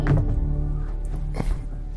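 A heavy, dull thunk of a door being kicked at the start, followed by a low rumbling resonance and a lighter knock about a second later. No one speaks.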